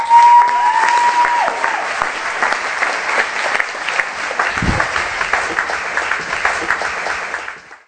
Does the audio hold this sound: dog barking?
no